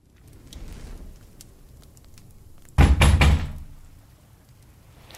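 A quick cluster of three or four heavy, loud knocks on a door, breaking an otherwise quiet, faintly rumbling background with no one speaking.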